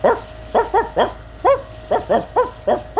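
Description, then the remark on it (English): A dog barks about ten times in a quick, steady series, each bark short and loud, with no talking around it. “will you do some of your best barking, please?”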